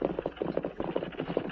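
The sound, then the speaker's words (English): Horses' hooves clip-clop in a steady, quick rhythm as horses carrying two men approach at moderate volume, with no one speaking. “Doggone if it ain't horses. Two men.”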